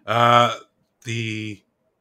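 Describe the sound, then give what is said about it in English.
Two loud, drawn-out burps in quick succession, each lasting about half a second and separated by a short pause, with no talking around them. “So nice vegan burp, by the way.”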